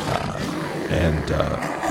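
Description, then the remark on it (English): A person voices a loud, sustained roar in imitation of a big creature, a rough throaty growl rising and falling over about two seconds. “And he just gallantly roars.”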